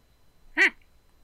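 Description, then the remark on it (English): A lemur gives one brief, squeaky call with a quick rise and fall in pitch, fairly loud against an otherwise quiet background. “I don't know how to talk to this lemur.”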